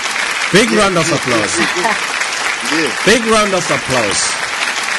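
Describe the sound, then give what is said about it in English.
Steady applause, a big round of applause for the day's conversation, fills all five seconds, a dense, crackling wash of clapping, while voices speak and call out over it at intervals. “Big round of applause.”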